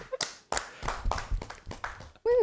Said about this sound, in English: So it's an actual clap. It is super cool.